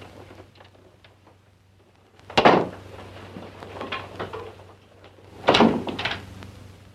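A bedroom door is pushed shut with a solid thud and rattle, followed by a second heavy clunk and clicking as the lock is turned, with a low hum underneath and no talking.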